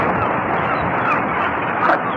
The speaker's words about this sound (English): Seagulls. At least I think that's what it is.